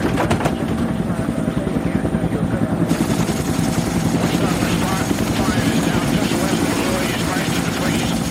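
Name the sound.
helicopters flying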